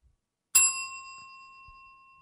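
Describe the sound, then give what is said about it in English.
A single bright strike of a hand bell, followed by a clear, sustained ring that slowly fades over a couple of seconds with no one speaking. “See, yours has like a lasting ring effect.”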